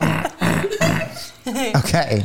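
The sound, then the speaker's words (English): A handful of short, wet, farting squelches made by pressing a hand against the neck, fairly loud, coming in quick bursts with brief pauses between them. “What am I doing with my hand? Just neck farting.”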